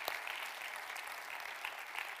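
An audience claps hands in a steady, dense wash of applause that holds at an even level throughout, with no voices breaking through.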